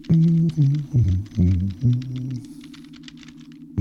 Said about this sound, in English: what are you typing? The password for us to get in this hangar.